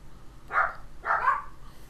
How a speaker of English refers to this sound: Dogs. Those are my dogs.